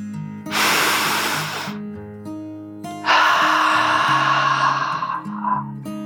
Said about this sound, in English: Woody took another deep dragon breath, in and out.